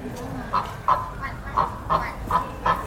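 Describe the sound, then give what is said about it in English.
An Indian runner duck, a tall, upright, long-necked domesticated duck, calls repeatedly, six or so short nasal honking quacks in an irregular rhythm, clear over a low background rumble, with no talking. “It's all crackling. Tall, upright duck. With this long neck.”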